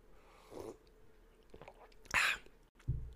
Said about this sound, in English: I'm going to sip some coffee here.